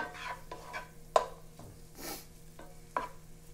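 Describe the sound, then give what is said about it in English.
Rice and vegetables for Mexican-style fried rice fry in a pan with a soft crackling sizzle, broken by repeated scraping strokes as it is stirred and a couple of sharper clacks of the utensil. No one speaks. “Hear it crispy, cracking a little bit. This is kind of like Mexican fried rice or Latino fried rice, whatever you want to call it.”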